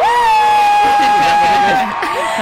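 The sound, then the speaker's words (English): Loud cheering from a small studio crowd during an America's Best Dance Crew After Show, with one long, steady high-pitched whoop held over a burst of excited overlapping voices and shouts. “Did you hear that applause?”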